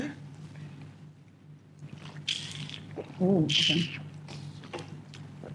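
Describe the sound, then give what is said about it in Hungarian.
Two hissy slurps of wine during a wine tasting, a sip taken into the mouth with air drawn in over the teeth, the second slurp longer and louder, with a low steady hum in the background. “Beveszel egy kortyot a szádba. Igen. És a fogaidon meg kicsit kint arra száll, próbáld beszívni a levegőt, adj neki egy kis levegőt, egy kis oxigént.”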